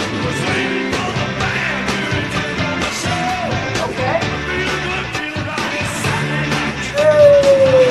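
A loud, full-band rock song by an American band plays throughout, driven by a thumping bass line and steady, punchy drums, with a sliding guitar or vocal note rising near the end.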